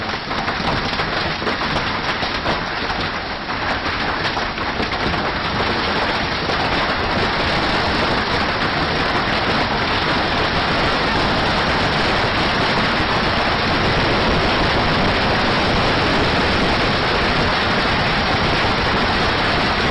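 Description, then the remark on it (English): A hailstorm in the desert of Arizona pounds down in a dense, unbroken roar of countless impacts, loud and steady for the whole stretch with no voices. “recently in Arizona, you know, we're supposed to be safe from all this in the desert, there was a hailstorm”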